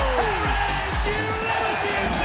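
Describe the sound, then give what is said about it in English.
A large golf crowd at the watering hole in Adelaide roars and cheers continuously, a dense, loud wall of voices with scattered whoops rising out of the din throughout. “Just listen to the roar of that crowd.”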